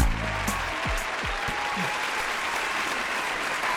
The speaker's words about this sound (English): Go ahead. I want to clap. You can clap. Why are you clapping? What? Because it's a very important day.